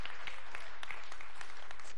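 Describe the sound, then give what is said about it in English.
An audience claps together in praise of God during a sermon, a steady, dense patter of many hands, sustained at a moderate level for the whole moment with no voices standing out. “Yeah, right there, you ought to be all clapping and praising God.”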